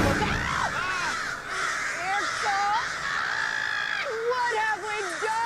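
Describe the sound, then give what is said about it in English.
A large flock of birds caws all at once, dozens of harsh overlapping calls forming a loud, continuous, chaotic chorus that fills the whole stretch without a pause. “That's not an eclipse, Nathaniel. Those are birds!”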